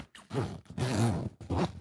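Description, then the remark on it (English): A fanny pack zipper is drawn open slowly in three rasping pulls, the middle one longest, each giving a buzzy ratcheting sound, as someone opens the fanny pack to get something out, with no talking. “I can hear the zipper slowness of speed.”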